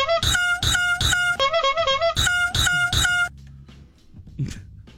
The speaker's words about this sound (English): Seriously, peacocks don't deserve it. For all their magical noises and clown horns they honk for us.